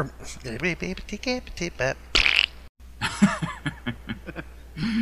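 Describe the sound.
Someone talks, then briefly stops to blow a short, buzzy raspberry that mimics a fart before speaking again. The imitation is about as loud as the surrounding speech.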